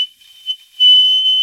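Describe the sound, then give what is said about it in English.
A person whistles a thin, high, steady note imitating an elk bugle, faint at first and then swelling louder and holding for the second half. “I have a huge chunk of scar tissue down here, so I don't whistle for nothing.”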